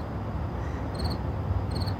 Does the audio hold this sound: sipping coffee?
no